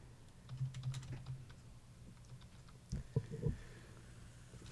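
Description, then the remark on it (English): Soft clicking of someone typing on a computer keyboard in two short bursts, a flurry of keystrokes then a pause and a few heavier taps, over a faint low hum with no talking. “You're not typing. Because this computer sucks.”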